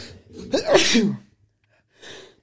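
A single loud sneeze with a sharp inhaled buildup and forceful burst, followed after a short pause by a softer breathy exhale.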